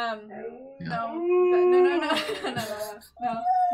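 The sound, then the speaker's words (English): Two pet dogs howl in long, wavering cries, their pitch rising and sliding between notes, with a brief break before another howl starts near the end. “Oh, they howl when there's the donation, right?”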